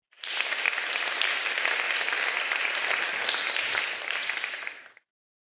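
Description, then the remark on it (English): A crowd bursts into steady applause, a dense wash of many hands clapping at a fairly even loudness for about five seconds before it cuts off abruptly. “So please give those people a round of applause.”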